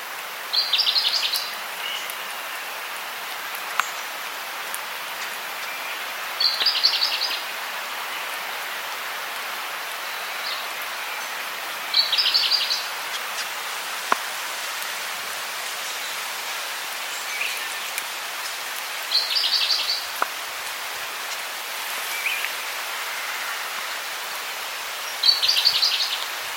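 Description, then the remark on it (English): A single forty-spotted pardalote, perched in a nearby tree on South Bruny Island on Noonanny country, calls in short, repeated bursts about every six seconds, fairly close, over a steady hiss of rain and wind on a rainy, windy day. “It's a rainy and windy day, and a single 40-spotted pardalote is perched in a nearby tree.”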